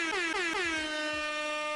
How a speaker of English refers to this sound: I have to do an air horn for that, because not many RPGs are doing that, right?